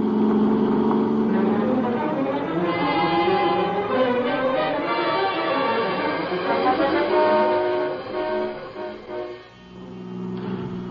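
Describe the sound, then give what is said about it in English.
A car engine revs hard and steadily at high speed as the driver keeps a heavy foot on the gas pedal, its loud whine sweeping up and down in pitch before dipping briefly near the end, with no voices. “I kept my foot heavy on the gas pedal.”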